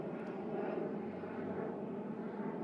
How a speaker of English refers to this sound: Oh, hang on, another plane going overhead.